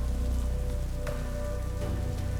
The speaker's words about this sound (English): A loud clap of thunder woke Leslie with a start. She was relieved to hear the storm instead of the scream that she thought she had heard.